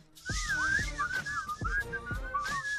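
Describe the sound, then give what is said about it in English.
On the Steve Harvey Morning Show, someone whistles a wavering, sliding tune, pitch swooping and warbling over about three seconds, with soft thumping beats underneath and no speech. “Whistle for me.”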